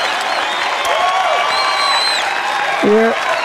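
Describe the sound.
A capacity crowd at Feather Studios applauds loudly and steadily throughout, a dense wash of clapping with scattered whistles and cheering voices rising over it.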